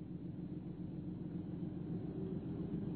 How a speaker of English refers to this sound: Jimmy and Naomi Clinton sat impatiently in their motor car, a long low Invicta.